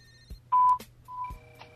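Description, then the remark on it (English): Two touch-tone beeps from a telephone keypad, each a short steady electronic tone, sound clear, with a faint click before each press and no talking. “If you're satisfied with the message, press 1.”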